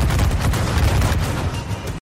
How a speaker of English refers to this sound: if you give the order to fire the cannons, you see your crew there on the deck loading the cannons and firing, and it's very satisfying, and I heavily recommend everyone play Black Flag.